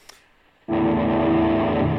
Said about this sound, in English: Can you hear that? Sounds like static. Yeah, that's what we like.